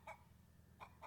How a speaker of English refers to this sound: I'm just waiting for the chickens to finish their dinner. Then I'll milk them before bed.